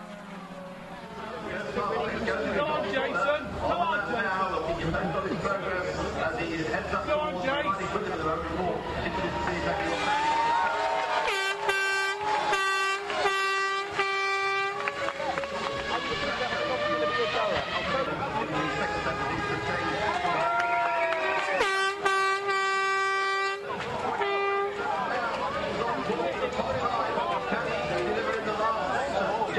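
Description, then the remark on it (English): A dense grandstand crowd shouts and cheers without pause, and two bursts of loud, blaring air horn blasts, several in quick succession, cut through the din midway and again later. “You never really hear what the partisans in the audience are shouting about and buzzing about. We did some recording when we were in the grandstand”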